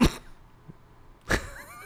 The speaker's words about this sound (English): You okay? I was trying to hold in a cough because you were on your way to making a really nice point. I couldn't do it.